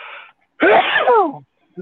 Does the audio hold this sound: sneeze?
yes